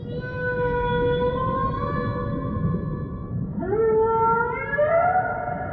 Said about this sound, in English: Whales, notably humpback males, make sounds called whale songs. These may be long groans, low moans, roaring sounds, trills and chirps that appear to be mating calls or feeding calls.